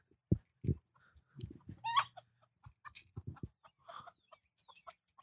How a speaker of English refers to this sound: Uh-oh. This chicken's running.